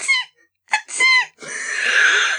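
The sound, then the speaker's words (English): A voice imitates a small, dainty sneeze: a few short, squeaky high-pitched bursts, almost mouse-like, then a longer breathy, hissing exhale that trails off. “It's like you've never heard me sneeze, but it goes something along the lines of...”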